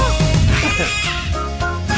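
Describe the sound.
A person imitates a crow with a loud, harsh, drawn-out squawk lasting about two seconds, raspy and strained, with wavering pitch and no other talk, introducing the Early Crow segment on Sky Sports Radio's Racing HQ.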